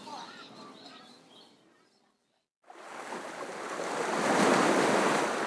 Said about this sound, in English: Beachside in the winter. Cold and windy and wet, we are alone with the shoreline. The ocean gulps and whispers, and even the gulls are quiet.